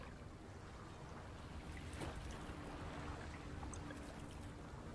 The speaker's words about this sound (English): You settled in to wait for the first 2 hours of your watch. The sound of the water going back and forth is kind of soothing.